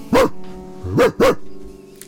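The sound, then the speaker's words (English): A big dog barks three times, deep and loud, with a single bark followed by a quick double bark. Each one is forceful, with short pauses in between. “That was such a definitive big dog.”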